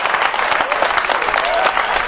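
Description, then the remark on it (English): A church audience claps steadily during a sermon, dense overlapping hand claps forming a loud, continuous patter with a few faint shouts mixed in, no single voice standing out. “Who's clapping? Who's clapping? Who's not clapping?”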